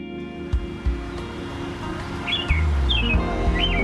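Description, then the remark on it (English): Wild birds chirp outdoors in Chicago in springtime, three short warbling calls spaced a second or so apart, over a steady low rumble of traffic or wind. “It's springtime in Chicago. Can you hear the birds?”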